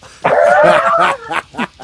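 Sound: dog barking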